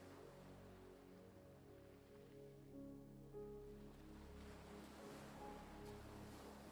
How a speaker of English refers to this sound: Imagine yourself standing on the fine white sand and listening to the sound of waves breaking against the shore.